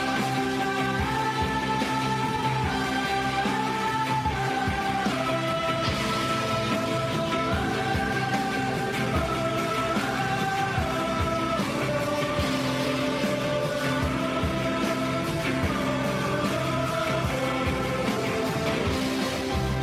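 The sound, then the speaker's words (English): Rocket engines roaring at liftoff during a launch: a steady, dense roar lasting about twenty seconds without letting up, with sustained tones that shift in pitch running through it and no voices. “engine running. Liftoff. We have a liftoff.”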